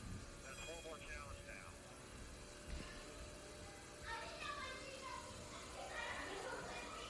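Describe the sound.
Muffled children's voices chatter and shout in the background of a secret Santa party, rising in a few bursts over a steady, noisy hum.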